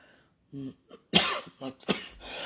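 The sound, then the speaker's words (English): A brief hummed murmur, then a run of about three dry, hacking coughs, the first one the loudest and the others following in quick succession. “There's a dry cough.”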